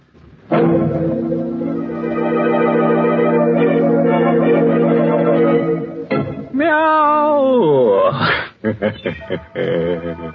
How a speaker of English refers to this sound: Of course, I'm sorry that that wall made such an unpleasant noise, such a tuneless wailing.